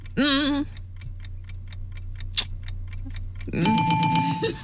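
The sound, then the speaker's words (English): A 10-second countdown clock for a timed category-naming game ticks in a quick, steady rhythm after a brief swooping electronic tone, then a loud, harsh buzzer sounds at the end, with a low hum underneath throughout. “Casey, 10 seconds on the clock.”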